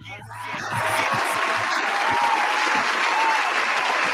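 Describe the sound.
Steady applause from a crowd, a dense wash of clapping that swells over the first second and then holds loud and even to the end, with faint voices mixed in underneath.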